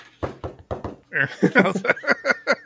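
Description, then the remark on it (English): Four quick, evenly spaced knocks on a door, apparently imitated by a voice rather than a real knock, followed right away by animated talking. “Knocking on the door. Sound effects are top notch here.”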